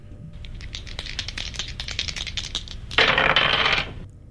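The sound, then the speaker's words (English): Dice clatter with a rapid string of sharp clicks and bounces as they roll off a desk, ending in a brief, denser rattling burst before settling into quiet. Fairly loud, with no voices. “Damn dice roll off the bloody desk again.”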